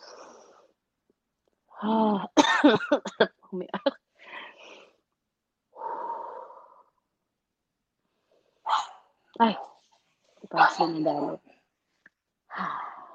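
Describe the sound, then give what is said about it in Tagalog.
Several slow, deep breaths, about five, taken at the breather's own pace to relax. Each is drawn in and let out with a soft audible rush, some exhales turning into voiced sighs, separated by pauses of silence. “Before we begin, pwede ba tayo huminga lang ng malalim kahit mga limang malalim na hininga lang?”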